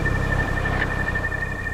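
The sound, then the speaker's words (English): A car engine being revved on a beach runs with a steady, loud low rumble and a thin constant whine above it, holding an even level throughout without any voices. “I'm gonna keep revving the engine.”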